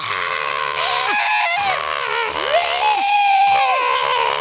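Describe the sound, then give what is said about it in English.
A woman in a wrestling crowd screams over and over in long, high-pitched, wavering howls that rise and fall, loud, on top of a steady roar of crowd noise, each time Lex Luger is on the offensive in his World Championship Wrestling world title match against Ric Flair. “She just screams every single time that Luger's on the offensive. She's just absolutely howling.”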